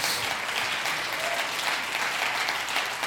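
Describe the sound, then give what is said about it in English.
An audience claps their hands together in steady, sustained applause, a dense wash of many hands filling the room for a few seconds with no voices standing out. “And would you clap your hands and say, better is one day.”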